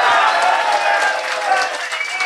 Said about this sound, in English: Hey, a big hand of applause for my brother, Rob. That's right.